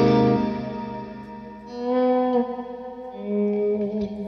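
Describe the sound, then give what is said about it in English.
Sustained electric guitar notes bloom into a wide, washy plate- or hall-type studio reverb, the tones smearing together with long, lush tails as new notes ring out over the lingering decay. “It's really simple to use, and you can get a relatively close to a spring reverb sound, and you can get quite atmospheric if you, not that I've ever had the use for it, but you can get really studio reverb-y kind of. Like more plates or hall type.”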